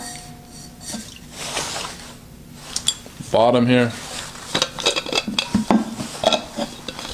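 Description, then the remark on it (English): Clicks and light metallic clinks as an insulated water bottle cap is handled, with a brief squeaky scraping twist in the middle and a person speaking a few words. “You put on the cap, and the other thing with these insulated bottles, you can put some coffee in here, whatever you want, warm liquids, and they'll keep them warm as well.”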